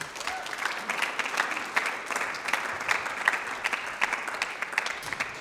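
An audience claps steadily for several seconds, a dense, sustained patter of many hands at moderate volume with no talking over it.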